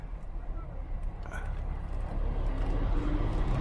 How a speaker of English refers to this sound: All kinds of traffic here.